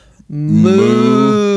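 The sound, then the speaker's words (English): A person gives a single long, loud moo in imitation of a cow, a sustained low droning call lasting over a second after a brief pause. “What have I started with this mooing when I first started?”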